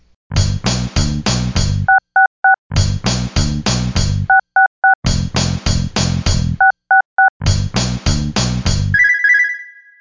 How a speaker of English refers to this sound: we dialed the phone